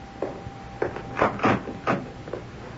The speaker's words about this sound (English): You want me to open the door, Mom? No. Let me.